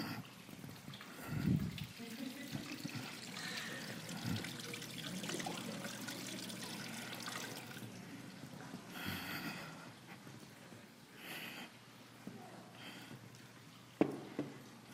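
Water pours and trickles steadily into a baptismal font for a church baptism, a moderate, splashing stream lasting several seconds with faint room noise around it and a brief sharp knock near the end.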